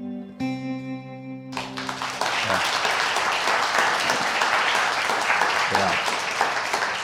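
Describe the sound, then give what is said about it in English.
A sustained musical tone fades as loud, dense clapping from a crowd bursts in and continues steadily, filling the space with broad, even applause. “Yeah, thank you for applauding for that.”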